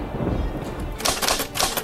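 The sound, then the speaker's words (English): A typewriter clacks out a quick, uneven run of sharp keystrokes, loud and bright, as Bruce Wayne tries to write a letter in his apartment with rain outside, following a second of low rumbling background noise. No one speaks. “He tries to write a letter.”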